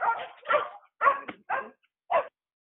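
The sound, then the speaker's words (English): A dog barks through a fence five times in quick, uneven succession, each bark short and sharp with brief gaps between, clear, with no one talking over it. “Oh, I think you dog through the fence.”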